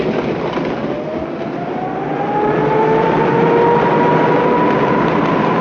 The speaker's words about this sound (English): Oh, yeah, brakes are dragging. I... Our rig's moving.